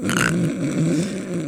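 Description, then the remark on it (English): A voice imitates loud, deep snoring: one long, rough, rumbling low snort held for over a second, with a brief breathy hiss at the start and no other sounds. “And I'm like, you're snoring. It's so, so loud.”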